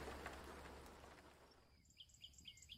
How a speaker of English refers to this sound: Sun's coming up. Birds are starting to sing.